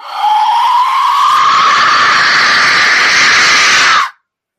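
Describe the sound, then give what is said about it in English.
A train whistle blows one long, loud, steady blast for about four seconds, its shrill tone rising slightly in pitch before cutting off abruptly. “Yeah, I have a train whistle.”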